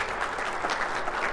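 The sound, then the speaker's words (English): An audience claps together in a dense, sustained burst of applause, steady and fairly loud throughout, with no individual claps standing out and no one talking over it. “Yeah, it's good to clap.”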